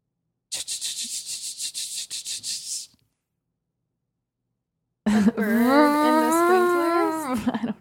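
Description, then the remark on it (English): A voice makes rapid, rhythmic hissing bursts imitating sprinklers, falls silent for two seconds, then launches into a loud, wavering, buzzing drone imitating a lawnmower mowing the lawn outside. “A bird in the sprinklers. Those two are right. It's outside. Mowing the lawn. Yes, it's lawnmower.”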